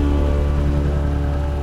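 A synthetic electric-car sound: a steady, loud electronic hum with deep bass and stacked higher tones, holding an even level throughout with no voices.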